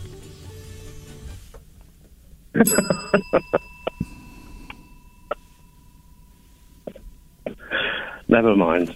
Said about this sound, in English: So ring the bell, please.